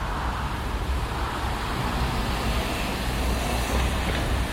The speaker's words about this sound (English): So the rumbling of a bus in the background kind of feels the same as something rustling nearby.